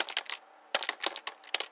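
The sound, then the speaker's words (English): Quick, irregular clicks of random numbers being pressed as a passcode on a keypad, bursts of taps with brief pauses between them, no voices. “Let me try hitting random numbers.”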